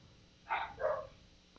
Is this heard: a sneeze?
no